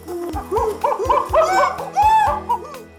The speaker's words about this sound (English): If you guessed ape, then you're correct. Monkeys and apes are fascinating animals known as primates.